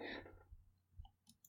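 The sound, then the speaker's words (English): A soft scraping slide opens, followed by a few light metallic clicks and clinks as two prize coins are slid across a table to a player after a doubled bet in a game of craps. Quiet, with no voices. “You are able to double your bet, so you get both of your coins back. And two prize coins are slid over to you.”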